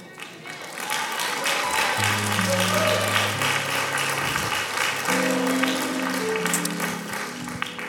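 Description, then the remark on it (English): A church audience claps steadily for several seconds for the church mothers, a dense, even wash of many hands, while low sustained keyboard chords swell underneath and shift partway through. “Clap again.”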